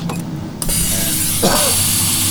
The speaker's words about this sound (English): The sound of air rushing out of the airlock. The captain is spaced, or you assume.